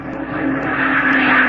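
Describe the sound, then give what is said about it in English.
A loud, steady roar of jet planes passing overhead, swelling slightly, with a low engine drone beneath the rushing noise and no voices. “Those weren't ducks. Those were jet planes.”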